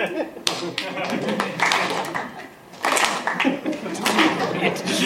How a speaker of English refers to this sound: That was me applauding like in a film. Three times.